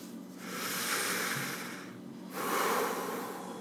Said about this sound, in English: That's it. Heavy breathing.